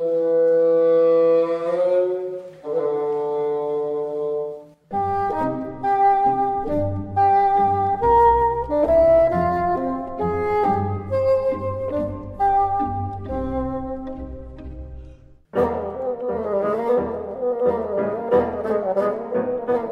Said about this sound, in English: You are just listening to the beautiful tones of solo bassoonist